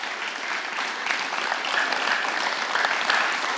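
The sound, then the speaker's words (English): An audience of students claps steadily after hearing they raised $26,000 for Proclaimers, a dense, even wash of many hands that holds at a fairly strong level throughout, with a few faint whoops rising above it near the end. “You should totally clap.”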